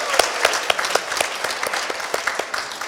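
An audience claps steadily for a few seconds, with sharp individual claps standing out above a dense, continuous patter of hands; no voices are heard.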